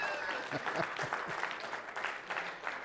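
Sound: audience clapping hands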